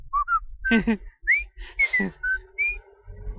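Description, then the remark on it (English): Someone whistles a short, lilting tune of quick rising and falling notes, clear, over a low background rumble with a couple of brief noisy bursts. “Oh, I thought I heard him whistling.”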